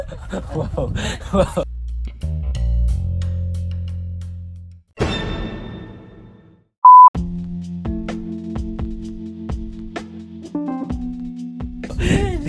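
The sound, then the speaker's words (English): A large bee buzzes outdoors in a steady, droning hum, rising and falling over several seconds, with a brief electronic beep partway through and a voice talking at the start. “sorry, there's a bee out here. It's really big.”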